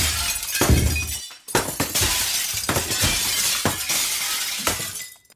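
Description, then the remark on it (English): Window panes of Mrs. Papineau's house shatter loudly after a sudden eruption of sound: a burst of breaking glass followed by repeated crashes and tinkling shards over several seconds, with no voices. “The next day, a sudden eruption of sound was followed by window panes shattering.”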